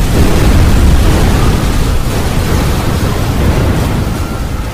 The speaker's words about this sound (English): Control! Multiple explosions at this location! Respond with all available units!